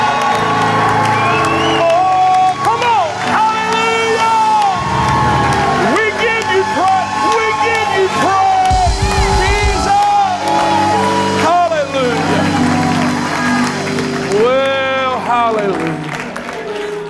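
An audience at Remnant Church erupts in loud, sustained praise before the pastor's message: many voices shouting and whooping in rising and falling cries over steady clapping, a dense roar that holds throughout without letting up.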